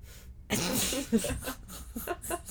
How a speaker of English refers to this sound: I'm surprised you, like, haven't blown out your eardrums. You blow your nose so hard. Really? Yeah. It never hurts my ears. I never go that far. Oh, I just, the way you blow your nose is crazy to me.